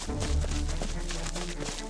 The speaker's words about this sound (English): Soter stayed alert as the sun fell and the city got quiet. But not to Soter. From his post, he heard something suspicious. Footsteps.